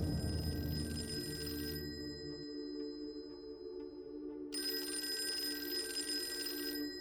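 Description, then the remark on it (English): A telephone rings with an incoming call in two bursts separated by a short pause, a bright, steady, loud trilling bell. No one speaks. “soon after, he received 2 panicked phone calls.”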